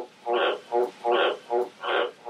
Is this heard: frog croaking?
yes